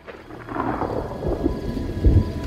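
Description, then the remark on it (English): Steady rain pours down on a dark, stormy night, with low thunder rumbling underneath and a heavier boom near the end; no one speaks. “And so this time, when she calls out to see if someone is out there in the dark, rainy night, we see that there is someone”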